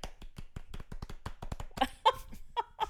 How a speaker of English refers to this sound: And they all clap for him. And there's something so weird about the moment.